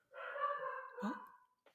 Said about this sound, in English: Darcy's making an appearance. Hello, Darcy. My apologies. That's my son, my dog.